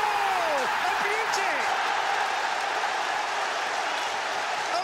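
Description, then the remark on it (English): A huge football stadium crowd roars in celebration as Trevor Chalobah scores on his Premier League debut, a dense, sustained wall of cheering at steady loudness, with a few whistles rising and falling through the din early on. “Crowd desperate for him to shoot. Oh!”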